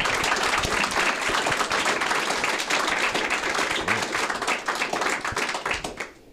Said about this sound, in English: And let's give our panelists a round of applause, please.